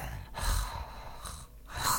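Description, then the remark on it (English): Heavy, breathy exhalations and inhalations coming in a few long rushing waves with brief pauses between, loud and airy with no talking. “It's just the sort of breathing noises.”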